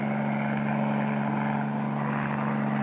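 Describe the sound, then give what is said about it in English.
A steady, loud helicopter engine and rotor drone in flight, continuous, with a low throbbing hum and a broad whirring wash that holds evenly throughout, no voices. “Longwood Field, helicopter 38 Bravo. Come in, please.”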